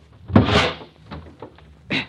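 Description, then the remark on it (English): The heavy metal door of a wrecked car is wrenched open: a hard thump, a grinding scrape that trails off, then a final clunk about a second and a half later, fairly loud. “I can just get this door open.”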